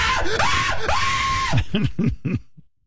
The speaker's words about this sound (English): You would scream that way, too, if you saw sharks falling out of the sky.